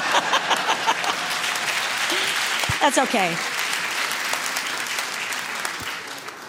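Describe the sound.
Audience applause rolls in from the back, swells and holds steady for several seconds, a dense wash of clapping, while a man speaks briefly over it.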